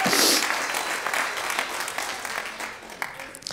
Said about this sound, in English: Come on, give a round of applause for this man of God. Come on.